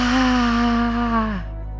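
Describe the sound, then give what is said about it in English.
A single loud, forceful lion's breath exhale with the tongue sticking out, during a breathing practice, lasting over a second, voiced and breathy like a drawn-out 'haaa', dropping off abruptly at the end. “And exhale, sticking the tongue out.”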